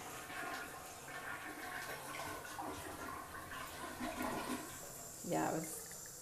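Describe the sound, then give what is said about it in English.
A toilet flushes, steady rushing and swirling water filling the whole stretch, with a brief voice surfacing near the end. “So now I'm just going to wash my face and brush my teeth, and actually going to flush this toilet because I was on a phone and I didn't flush the toilet earlier.”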